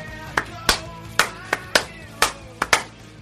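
A slow clap: sharp hand claps repeat at a steady, unhurried pace, about ten crisp smacks in a row, with a faint tonal hum running underneath.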